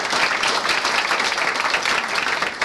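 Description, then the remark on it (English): An audience at a storytelling event claps for the storytellers in a steady, dense round of applause, loud and sustained throughout with no voices rising above it. “So one more time before we even start, let's give them a round of applause for it's going to be great.”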